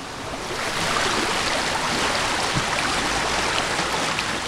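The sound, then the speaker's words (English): A waterfall beside Stott Park Bobbin Mill, in the countryside of the Lake District, Cumbria, roars in a steady, dense wash of rushing water, loud and close, holding constant throughout with no voices or other sounds breaking through. “We're standing at the edge of a waterfall.”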